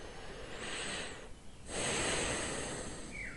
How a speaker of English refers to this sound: You let the steam enter your nostril.